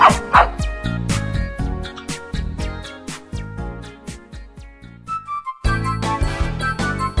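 A dog barks and yips repeatedly in quick, rhythmic bursts, loud, blending with a musical backing, with a brief lull before the barking picks up again.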